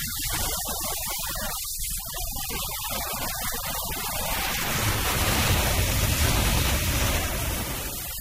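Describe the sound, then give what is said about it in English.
A dense, washy swirl of sound with choppy fragments early on, then a smeared, hissing swell that builds toward the end: audio played backwards through heavy echo. “That shouldn't have gone to echo out there. It might have been backwards.”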